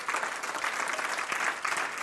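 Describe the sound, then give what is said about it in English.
An audience at a preacher's sermon claps steadily, a dense wash of many hands with no pauses and no voices, holding at an even, moderate loudness throughout. “I'm going to wait while you clap.”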